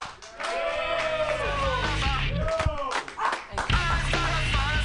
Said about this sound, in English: Everybody, this next comedian is a very funny lady. People, start applauding right now